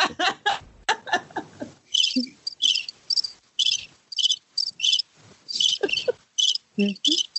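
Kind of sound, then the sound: sound effect, cricket chirping sound effect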